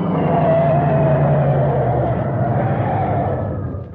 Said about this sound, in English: Okay. We're in luck. There's no other cars in the highway right now. Step on it.